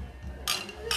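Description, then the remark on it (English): Glasses clink together in a toast on Maggie Day, two quick bright knocks, the second just after the first, with faint low murmuring in the background. “Cheers, lads. Cheers.”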